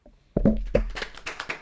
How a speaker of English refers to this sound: That clap sounds awesome. That literally sounds like it's a real clap. Like an audience. That sounds awesome.